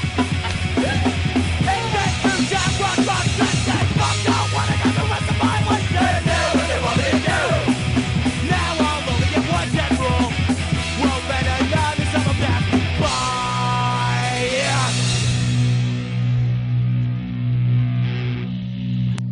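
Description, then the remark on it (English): A loud, dense rock song with a crowd of voices shouting together over driving drums and guitars, shifting near the end into a sustained, ringing chordal section as the band holds the final notes. “There's gang vocals. There's people shouting.”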